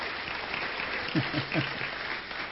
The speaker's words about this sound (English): So give the Lord another hand clap of praise.